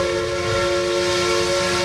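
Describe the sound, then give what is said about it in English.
A train's whistle blows in one long, steady, tonal blast over a low rumble of rolling wheels, loud, with no voices. “Bessie Dashiell was a 17-year-old girl when she was riding on a train for her family's summer vacation.”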